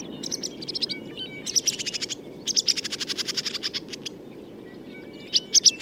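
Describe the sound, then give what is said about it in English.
Barn swallow calls: quick bursts of high, chattering twitters in repeated runs, fairly clear over a steady low background hum, with brief pauses between the bursts. “It's very similar to other swallows, this call.”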